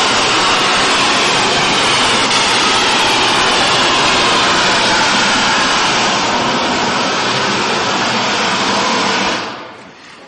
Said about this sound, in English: But to get an appreciation for the sound of what this massive waterfall would be like, this rainfall, this is an example.